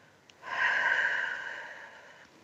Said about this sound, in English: And then as you breathe out, I want you to breathe out like you're breathing through a straw. This kind of breathing.